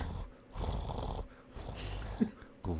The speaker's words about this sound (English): Like, loud. It wakes me up. And she is next to my bed where my head is purring loudly.